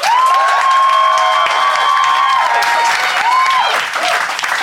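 A Phoenix audience applauds loudly and steadily to vote for one side of a debate, dense clapping filling the whole stretch, with shrill whistles and cheering cries rising above it.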